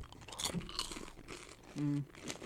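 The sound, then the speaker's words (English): Crisp crunching as someone chews a crunchy caramel snack, several irregular bites in quick succession, with a brief hummed 'mm' of approval near the end. “They're just so crunchy and caramely.”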